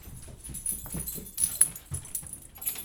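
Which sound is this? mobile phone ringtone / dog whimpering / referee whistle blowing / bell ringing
dog whimpering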